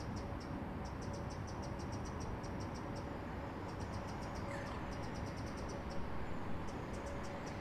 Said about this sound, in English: So what are we listening to at the moment here in the Great British Garden? I thought it was a woodpecker, but it's not. So we've got a chiff-chaff calling. They would have just come over from Africa.